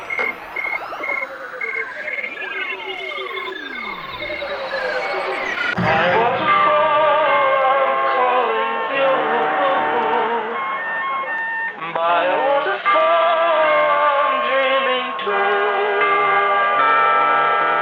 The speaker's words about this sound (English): Well, here you have it, ladies and gentlemen, the cricket song, heard for the very first time by human ears exactly as heard by the cricket itself.